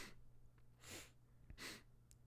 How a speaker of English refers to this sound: He just sniffs really hard.